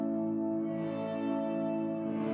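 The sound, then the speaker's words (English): A sustained guitar chord played through a pedal with everything off except reverb, which is turned fully up, its attack smeared into a steady, shimmering wash that rings on evenly without distinct plucks. “One setting that I think is cool on this is everything off except reverb, and I've got reverb dimed.”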